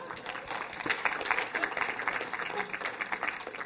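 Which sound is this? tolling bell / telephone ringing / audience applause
audience applause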